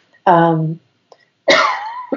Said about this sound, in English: apologize about the coughing.